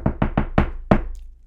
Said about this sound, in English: But no, on a more real note, Michigan State should. Knock on wood.